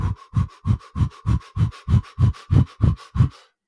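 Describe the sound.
A person imitates rugby players panting through the mouth while stretching in a cool down: about a dozen quick, even, breathy huffs in a steady rhythm, moderately loud with no talking over them.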